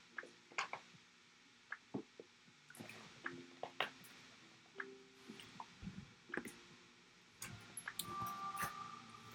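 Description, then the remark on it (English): Quiet sips of water during a short water break in hot weather in London, with wet slurps, swallows and small clicks coming in irregular bursts, no talking, over a faint background hum. “Just going to have a little water break.”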